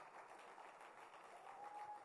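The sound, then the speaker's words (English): A crowd claps steadily to welcome a woman coming up to minister, in a dense, continuous wash of applause that holds an even level throughout, with a faint thin tone rising near the end. “And as you clap your hands, let's welcome our sister Grace as she comes to minister to us.”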